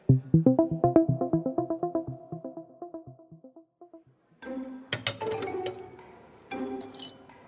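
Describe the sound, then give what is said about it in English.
Glasses clink together in a toast to a new job, a bright ringing chime with some rustling around it, following a quick run of tinkling tones that fade away. No voices. “Cheers to your new job. To a new job.”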